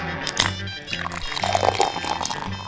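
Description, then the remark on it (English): A toilet flushes with a sustained rush of swirling, pouring water that stays fairly loud for a few seconds, with a low voice-like murmur underneath. “I would choose to dump it down the garbage chute and flush it down the toilet. Oh, here. Here, just add a sound effect.”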